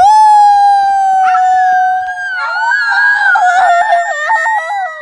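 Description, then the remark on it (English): A loud, close howl of the White Wolf: one long, steady, sustained note, then wavering, rising and falling tones that overlap as though a second howl has joined in. “And then all of a sudden they heard this noise right in their ears.”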